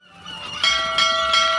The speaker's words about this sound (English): What's that? Three bells! Well, we all know what three bells means! Free ice cream!